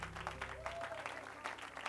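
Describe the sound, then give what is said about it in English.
A church audience claps in praise to the Lord, steadily and loudly for a couple of seconds, a dense, rhythmic patter of many hands, with a low sustained instrumental tone underneath. “Clap with all your might.”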